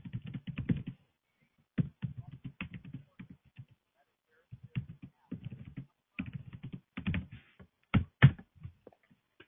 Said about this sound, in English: My microphone is like right next to my keyboard, so I'm always worried that like I'm typing really loudly. Yeah, you kind of are.